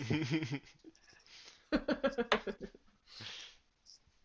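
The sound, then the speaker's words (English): Dice clatter across a desk in a quick burst of rattling clicks that settle within about a second, with someone speaking briefly before and some soft noise after. “Do you want me to say, do you want me to go with what it just read on the floor? Desk dice are better.”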